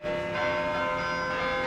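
The tower bells of Minneapolis City Hall ring out a melody, with a fresh strike layering over the lingering hum of the previous note. The tones are loud and resonant, with no voices.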